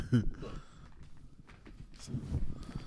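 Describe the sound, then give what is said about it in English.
A few soft, muffled thumps as someone steps up onto a couch and then drops heavily onto the cushions, with faint voices murmuring in the background. “He'll stand on the couch and then sit down.”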